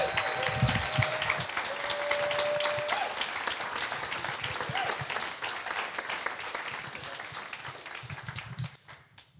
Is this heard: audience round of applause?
yes